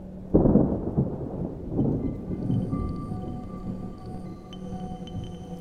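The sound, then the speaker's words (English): A sudden loud clap of thunder rolls into a long, low rumble that slowly fades, leaving a steady hiss of rain falling throughout. “The VKK in one hand, leashed dogs in the other, Amandi opened the rectory door and stepped out into the storm.”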